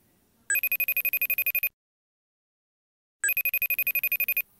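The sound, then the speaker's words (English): A FaceTime video call ringing tone for a weekly Friday call that goes unanswered plays in two bursts of rapid, bright trilling pulses, each lasting just over a second with a pause of silence between them, clear with no talking. “Ringing here.”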